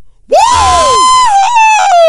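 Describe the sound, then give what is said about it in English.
A person lets out a loud, sustained cartoonish yell, imitating a goofy character's scream, rising sharply then holding a wavering high pitch for about two seconds before trailing off. “I thought we were just doing like a regular woo, not like the remix. I was trying to go for the goofy.”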